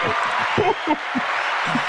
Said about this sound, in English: Oh, you want the applause? Okay, there you go.